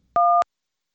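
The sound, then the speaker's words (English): A single phone keypad button tone as 1 is pressed on a phone, a short, clear two-pitch beep lasting about a quarter second, with silence before and after. “Are you hitting 1 on the phone or on the computer?”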